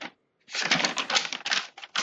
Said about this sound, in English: Alrighty, and I'm gonna shuffle my papers real quick, sorry.